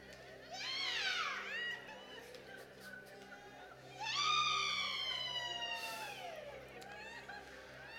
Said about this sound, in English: Wherever there's a fire, there's always a siren. And God has his siren right here.